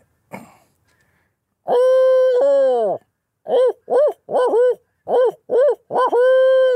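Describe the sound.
A person imitates a barred owl, starting with long drawn-out hoots followed by a rapid series of short, rhythmic hoots and a final long call, loud with no talking.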